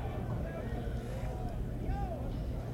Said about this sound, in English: 1-1 pitch just missed. God. 2-1. You can hear what the crowd thought of that one.